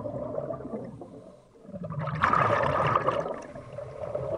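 Water sloshing, then a brief lull before a surge of bubbling and churning as a diver slips below the ice-cold surface of Lake Champlain at a shipwreck site, with muffled underwater rushing continuing.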